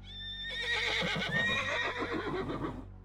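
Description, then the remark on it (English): A horse lets out one long, wavering whinny that trails off after a couple of seconds. It sounds fairly soft and distant over a low, steady background hum. “He hears horses in the distance.”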